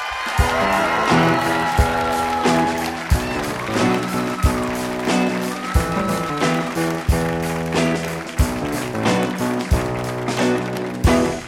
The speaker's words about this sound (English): That was the coolest intro music I'll ever have in my entire life. That was pretty good. That's a … band, everybody.